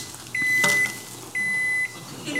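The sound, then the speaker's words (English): A microwave oven cooking cornbread beeps twice, each a steady high-pitched tone lasting about half a second, over a low background hum, with a brief clattering knock during the first beep. “Microwaves bounce around in the chamber and cook food through radiation heating, exciting the molecules within an object by becoming lodged in water, sugar, and fats.”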